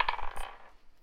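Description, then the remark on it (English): Dice clatter across a tabletop in a quick burst of several clicks, then settle with a short, fading rattle. The sound is fairly quiet and alone. “Is that the same dang thing? Is that the same roll?”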